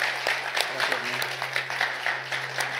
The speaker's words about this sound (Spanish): Y si le ibas a dar un aplauso en todo el día a Dios, este es el momento. Este es el momento.